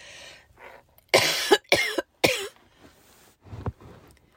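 Three harsh coughs burst out in quick succession after some soft breathing, followed a moment later by one shorter, quieter cough. Nobody speaks.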